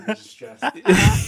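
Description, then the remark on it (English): Someone mimics a man's frantic hyperventilating as he struggles to get a sentence out: a few short, voiced panting gasps, then a longer, loud, breathy rush of air, all in quick succession over about a second. “Because, like, when you think about the situation, it's hilarious that he's, like, fully just now hyperventilating.”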